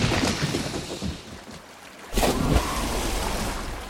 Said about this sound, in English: Into a freezing river. At least I think it's a river. I feel the current boiling beneath me, sweeping through the twists and turns in this underground channel.